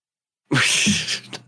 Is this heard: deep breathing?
no